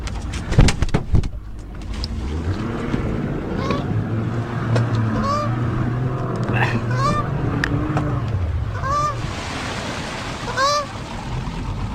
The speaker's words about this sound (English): Get away from the goose!